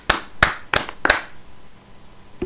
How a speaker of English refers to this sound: Oh, was that the clap? Do you want to do that again?